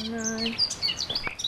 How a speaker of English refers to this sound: Oh, but listen to that beautiful bird song.